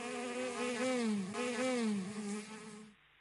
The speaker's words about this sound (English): Number six is a bee buzz.